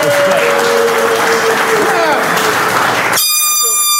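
A loud crowd claps and cheers in a dense, steady roar while an air horn blares through it, then the noise cuts off abruptly into a sustained, buzzy high-pitched tone.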